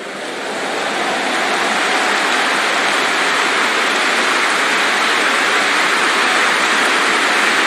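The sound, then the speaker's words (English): An audience claps hands in a dense, continuous roar of applause that swells quickly over the first second and then holds steady and loud, with no voices heard. “I've always said, those of you who are clapping, your hands will never wither.”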